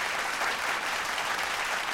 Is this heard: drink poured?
no